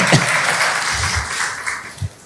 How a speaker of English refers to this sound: Thank you. Clap for him.